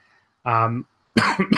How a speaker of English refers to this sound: still getting over my illness, too, so if I cough during this show.